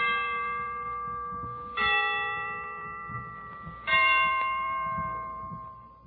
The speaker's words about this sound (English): Now I'm all set. The Christmas bells can ring anytime they're ready. Well, I imagine they're ready now. Let's listen.